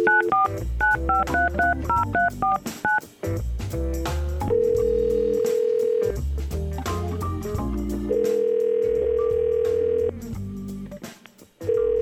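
Radio station Y100 hosts place a call: a quick run of telephone keypad beeps dialing a number, followed by long steady ringback tones repeating on the line, clear, with a music bed underneath and no talking.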